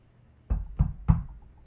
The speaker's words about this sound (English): Knock on the door. What's this? Open the door. It's a mailman.